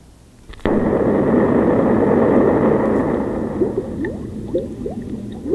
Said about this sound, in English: Oh, bubbles? Yeah, it's bubbles. Why would they put that after an explosion? Are they threatening to turn us into bubbles? No. It sounds so much like rain, doesn't it?